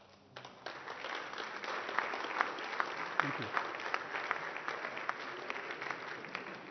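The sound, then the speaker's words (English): A crowd applauds steadily for a group of people as they go back to their seats, dense rapid clapping with a few sharper individual claps standing out, moderately loud throughout. A brief spoken thanks comes through over it. “A little round of applause for these guys as well.”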